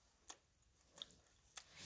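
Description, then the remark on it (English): A child crunches into an ice cream cone, three crisp bites spaced roughly evenly over a couple of seconds, fairly quiet with no talking. “Which means they can hear you chew.”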